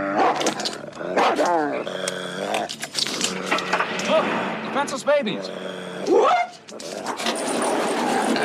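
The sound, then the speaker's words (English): In a scene from the film Fletch, a dog on the hood of a rental car barks and growls loudly in repeated harsh bursts, with snarling between barks, while a man briefly speaks over the commotion. “Fletch gets into his rental car, and the dog ends up on the hood, to which Fletch still has the camera out, taking pictures, takes a picture of the dog and says, "Smile, say Fletch."”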